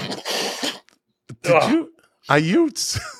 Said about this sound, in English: Did you just blow your nose?